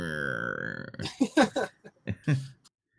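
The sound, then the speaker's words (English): A man's voice imitates a growling stomach as a sound effect: a drawn-out, buzzy rumbling groan followed by several short gurgling bursts, fairly loud. “But I like the sound effects too, especially his stomach growling.”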